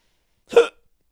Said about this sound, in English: Oh, no. I have hiccups.